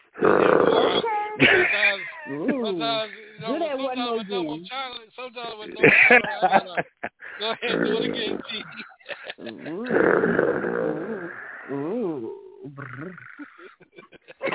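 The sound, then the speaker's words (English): A person imitates growling, with several rough, throaty bursts mixed with voiced, snarling sounds, fairly loud and irregular in rhythm. “And we don't purr, we growl.”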